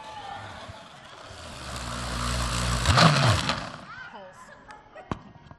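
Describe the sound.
A blender chopping up money whirs with a low, steady hum and a gritty grinding texture, growing louder for a few seconds before cutting off abruptly. A brief voice follows.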